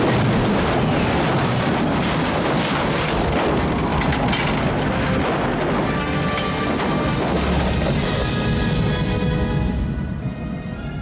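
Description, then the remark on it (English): A door bursts apart in a loud, violent explosion, followed by a long roar of crashing debris and rumbling noise that fills the whole stretch before easing off at the end. “Something bangs on the door and then Frank goes and grabs his gun. Yeah. The door explodes.”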